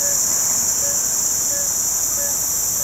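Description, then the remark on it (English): A dense, steady night chorus of shrill insects fills a tropical rainforest at a remote campsite in Borneo, with frog-like calls repeating roughly every half second beneath the loud, continuous buzzing. No one speaks. “And then suddenly the sort of cacophony of a tropical forest at night hits you.”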